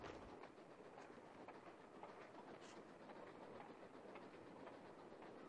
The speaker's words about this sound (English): This train goes from Durango to Silverton in Colorado. It's a narrow gauge, but it's a beauty.